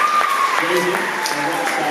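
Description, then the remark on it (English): An audience applauds steadily for two special guests invited up, one a two-year-old girl, a dense crackle of many hands clapping at an even loudness throughout, with a faint voice or tone running beneath it. “Maybe we can give them a round of applause.”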